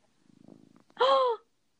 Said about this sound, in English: Those are Mushu purrs. That's such... if you can hear them. Oh, yeah, that was a good one.